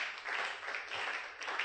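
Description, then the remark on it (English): An audience claps their hands together during a sermon, a dense, steady wash of applause with no distinct individual claps, holding at a fairly loud, even level throughout. “Clap your two hands for them.”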